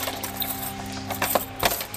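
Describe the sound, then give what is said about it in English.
Keys jangle and clink in a few light, scattered metallic bursts over a steady low electrical hum, with no voices. “Where's those keys?”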